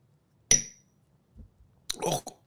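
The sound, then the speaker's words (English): Shot glasses of Open Pit barbecue sauce clink together once in a toast, a bright ringing tap that fades quickly, followed by a soft thud and a brief burst of rustling, clattering noise. “All right, bitches. Cheers. Salute.”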